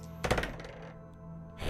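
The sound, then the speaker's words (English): Two dice clatter across a hard tabletop in a quick burst of small knocks that fade out, followed by another short rattle near the end. Fairly quiet, with no talking. “So I roll both dice?”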